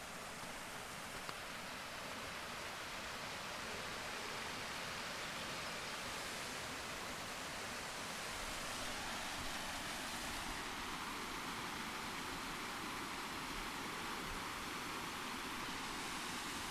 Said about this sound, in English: I'm standing here by a waterfall. This is just snow runoff. It'll be gone in a couple of weeks, maybe.